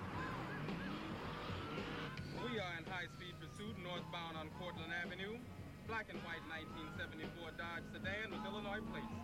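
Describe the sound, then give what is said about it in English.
A steady engine drone runs under repeated high, wavering squeals like tires skidding, with chattering voices mixed in throughout a loud, busy car chase scene in a movie. “I love all of the bullshit, stupid car scenes in this movie.”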